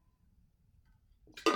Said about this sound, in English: Give me 1 second and take a drink of my water.